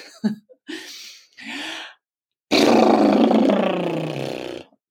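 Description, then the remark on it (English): A few quick breathy inhales, then a long, loud exhale blown through flapping lips, a fluttering horse-like trill that holds steady for about two seconds before cutting off. “I make this noise, which is to exhale and blow out my lips.”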